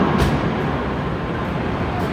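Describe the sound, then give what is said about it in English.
A plane taking off: a loud, steady engine roar of broad rushing noise, holding even throughout the brief stretch with no voices. “The sound of a plane taking off, bound for adventure and new experiences.”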